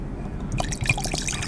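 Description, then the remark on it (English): Nine Banded whiskey is poured neat, without ice, into a glass, a brief gurgling trickle with small splashy blips that starts after a short quiet moment and runs steadily to the end. “How many fingers are you going to pour? Two fingers or three?”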